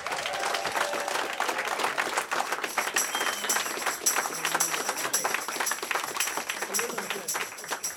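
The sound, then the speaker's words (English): A crowd breaks into sustained, loud applause, dense overlapping claps at an even level for the whole stretch, with some faint voices mixed in as the audience welcomes a performer. “please give a big round of applause and a warm welcome”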